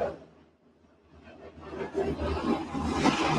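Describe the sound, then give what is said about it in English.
Three military helicopters fly over near Fort Lauderdale Executive Airport at night, a deep, steady rotor roar with a low throb that swells from quiet to loud across a few seconds and holds strong at the end. “And if you can hear that, That is a military helicopter that is going over.”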